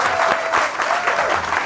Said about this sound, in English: Please, a big round of applause for Simon Garfield.